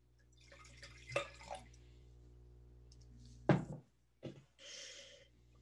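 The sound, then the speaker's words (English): Wine being poured into a glass: a few light clinks and knocks, then a brief gurgling pour with drips, all quiet and without any talking. “I can't wait to taste this one. I'm going to pour myself a little.”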